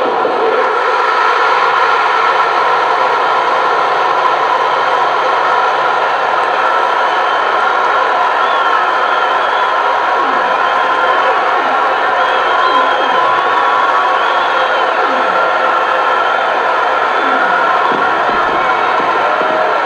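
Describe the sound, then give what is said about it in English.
A huge Philadelphia stadium crowd roars continuously at the end of the World Series game, as Philly wins its first World Series on a Tug McGraw strikeout. It is a dense, sustained wall of cheering and shouting that holds steady at high volume throughout, with no clear pauses. “The crowd will tell you what happens.”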